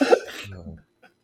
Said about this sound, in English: It's not making me laugh, though, because it's making me cough.